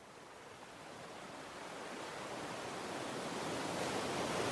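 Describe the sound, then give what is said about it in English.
Steady rushing surf washes in, a broad hissing roar that slowly swells louder over a few seconds, waves breaking against coarse granite boulders by the sea. No voices. “You linger a few more moments on the boulders by the sea.”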